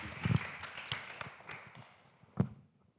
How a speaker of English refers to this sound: So one more round of applause, please